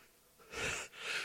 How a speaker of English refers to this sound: I think I got a sneeze.